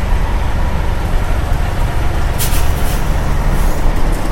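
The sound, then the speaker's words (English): A large city bus idles and pulls up with a heavy, steady engine rumble, then several sharp hissing bursts of air brakes release near the end. Fairly loud, with no voices. “Oh, here's the bus.”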